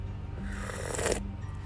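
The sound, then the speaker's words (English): A single short, airy slurp of a drink, a hissing sip lasting about a quarter second, over low background hum with no talking. “That's a slurp for my sister.”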